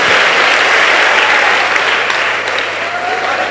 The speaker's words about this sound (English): Shout out, receive it. Clap your hands and sit down.